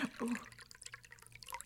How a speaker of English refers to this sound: No, go for it. Pour the wine.